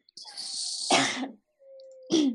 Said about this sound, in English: she was coughing over there pretty loud.